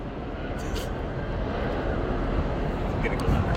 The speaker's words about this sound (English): Oh, yeah, dude, the planes are ahead, dude. Perfect. Stand by. LAX, clear for takeoff. Or landing, whatever it is.